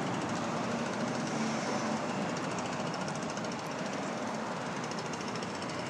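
A leaf blower operated by a worker drones steadily in the distance along a street, its engine whine and rushing air forming a continuous, even wash of noise with no voices over it.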